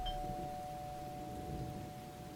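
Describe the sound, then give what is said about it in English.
A doorbell rings with a steady, sustained chime tone that hangs through the moment, fairly quiet against a low background rumble, with no voices. “What bell?”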